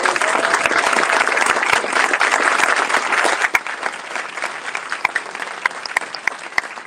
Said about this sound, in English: Let's congratulate all of these wonderful students as the 2022 AVID standouts for one more round of applause.